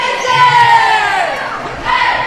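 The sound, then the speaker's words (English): A loud crowd at a basketball game cheers and shouts throughout, with many overlapping high voices blending into a sustained, echoing roar inside Jasper's small gym that swells again near the end. “Slightly smaller gym for Jasper, so everything echoes.”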